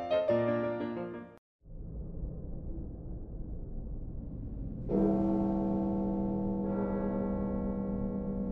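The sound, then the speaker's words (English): Deep, resonant bell chimes mark the midnight hour, one tone fading before a low rumble, then a louder strike around the middle that hums on, with another tone layering in near the end. “Ah, what a lovely sound. The chimes that mark the midnight hour.”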